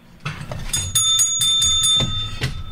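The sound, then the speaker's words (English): A bright metallic bell rings in a quick series of about seven strikes, its clear high tone sustaining between hits over a low background rumble. “Mine's got a clearer ring.”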